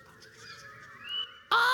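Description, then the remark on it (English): Birds call out at daybreak as the sun comes out, with drawn-out, nasal honking tones that rise in pitch, ending in a sudden loud, harsh burst; no one speaks. “But at a certain point, day breaks and the sun comes out and we hear the birds.”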